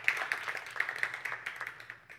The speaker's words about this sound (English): Now give me a hand clap to encourage me if this is helping anybody.